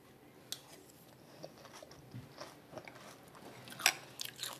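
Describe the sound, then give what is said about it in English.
Crunchy biting and chewing on chicken bones to get at the marrow, with sharp cracks and crackles scattered irregularly over a low background, one loud crunch standing out near the end. “And sometimes when I eat chicken, I always bite the marrow for some reason.”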